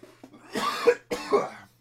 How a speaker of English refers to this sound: Sorry, this cough.